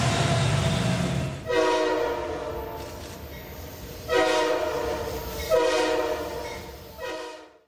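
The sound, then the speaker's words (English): A loud train horn sounds in several long, blaring blasts over the low, steady rumble of a rolling train, with no voices heard. “All aboard the Taysom train! Conductor Dave is on the Taysom train!”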